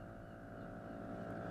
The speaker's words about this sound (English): The Curragh has an outboard motor fitted, so with little more than a cursory view of Omi Island to the north and Turbot to the south, you're already looking at the rocky coast and high central ridge of Turk